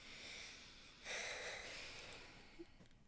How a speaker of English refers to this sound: Take a deep breath. Everyone, listener, deep breathing. 1, 2, 3.